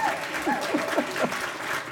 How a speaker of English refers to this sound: See, I got an older 65-year-old woman clapping for me. There you go.